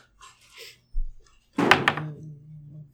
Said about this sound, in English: He's vigorously shaking the chair. But the baby's not in it, so it's okay.